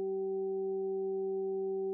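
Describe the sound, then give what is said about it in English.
A steady electronic 768 hertz sine tone, a Solfeggio frequency, hums without change for two seconds, smooth and unwavering, with faint lower and higher layers blended in. No voices or other sounds. “192 hertz, 384 hertz, 768 hertz. These are healing Solfeggio frequencies.”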